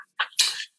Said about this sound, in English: Gesundheit.